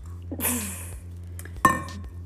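Someone takes a noisy slurping sip of water from a glass, followed by a sharp clink as the glass is set down, over a steady low hum.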